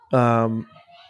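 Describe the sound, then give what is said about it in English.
A child lets out a single loud, drawn-out, high-pitched scream lasting about half a second, in another room while the children are being put to sleep, then it cuts off and only faint background noise remains. “Sorry, if you can hear my kids screaming.”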